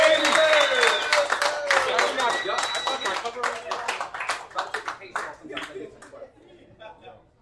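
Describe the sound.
A crowd applauds to welcome a performer to the front for his first time up, in a dense burst of clapping that gradually thins to scattered claps, with cheering and whooping voices mixed in during the first few seconds.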